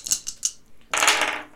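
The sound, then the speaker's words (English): A few sharp plastic clicks, then a dense, bright rattle lasting about half a second as dice are rolled during a tabletop role-playing game, tumbling and clattering across a hard surface before settling. No voices. “Give me a roll.”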